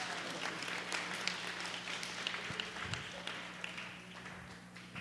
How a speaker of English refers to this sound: Let's give them a round of applause. Put your hands together for all of them.